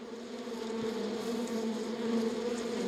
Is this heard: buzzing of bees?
yes